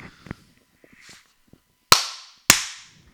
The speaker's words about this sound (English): Should we start now? I'll do it in post. Clap, maybe? Oh yeah, fucking claps, let's not forget.